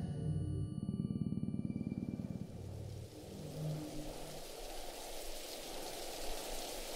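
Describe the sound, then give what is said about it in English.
A low, rumbling car engine runs for a few seconds, then gives way to a steady, soft hiss of drizzling rain in cold winter air that continues without any voices. “The Reverend, or Albie as James rubbingly called him, stormed out into the cold winter air and drizzling rain.”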